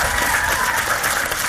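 A crowd claps steadily, a dense, even wash of many hands at a loud, constant level with no voices breaking through.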